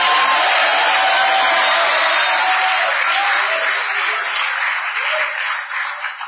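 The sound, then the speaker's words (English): A church audience bursts into sustained, dense clapping mixed with shouts to the Lord, loud and steady for several seconds before thinning slightly at the end. “Why don't you clap your hands and give the Lord a shout?”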